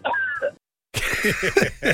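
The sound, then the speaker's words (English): A run of harsh, rapid coughs bursts out after a short silence, fairly loud, several choppy hacks tumbling one after another. “Are you trying to disguise the age with a cough?”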